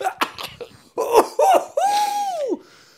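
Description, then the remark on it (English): Several harsh coughs after sniffing smelling salts burst out in quick succession, followed by a strained, drawn-out vocal groan that slides downward in pitch and fades. “I realize I can't smell that without coughing.”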